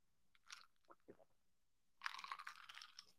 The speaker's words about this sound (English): Let me take a sip of my lemon water.